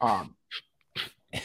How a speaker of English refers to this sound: just mute up when you're coughing, dude.